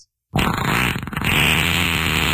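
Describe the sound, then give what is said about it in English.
A long, wet, sputtering fart starts abruptly after a brief silence and rumbles on loudly and continuously, with a gurgling low buzz and a slight break partway through. “Was it wet? Was it really wet?”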